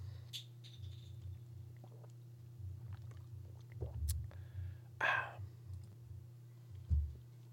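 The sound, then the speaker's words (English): A few quiet sipping and swallowing sounds from someone drinking water, spaced out over a steady low hum, with no talking. “Get another sip of water, guys.”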